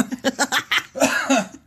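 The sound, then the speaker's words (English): A quick run of breathy laughter pulses gives way to a couple of harsh coughs, all within under two seconds and without any speech. “You laughed so hard you coughed.”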